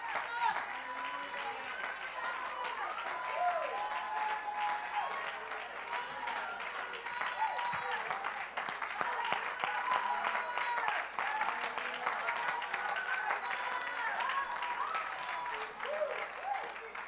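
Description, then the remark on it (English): A church audience claps steadily throughout as they are urged to keep on clapping, a dense, continuous patter of many hands, with voices murmuring and calling out beneath the applause. “Just keep on clapping.”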